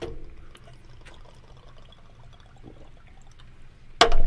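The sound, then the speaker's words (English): Someone chugs a half-gallon drink, a steady run of gulping liquid sounds for about four seconds, ending in a sudden loud burst. No one speaks. “I'm the fastest chugger.”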